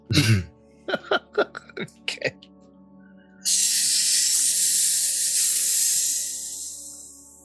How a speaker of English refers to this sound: Did a snake just attack someone? I think … just, or … just hit a whippet.